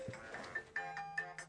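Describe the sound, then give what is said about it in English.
A phone alarm that its owner had set goes off during a phone conversation: a quiet electronic melody of bright, repeating tones pulsing in short bursts, with no voices over it. “My alarm went off on my phone.”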